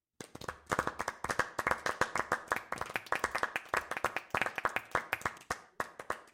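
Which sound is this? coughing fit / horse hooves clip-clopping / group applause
group applause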